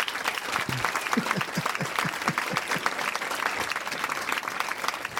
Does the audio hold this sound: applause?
yes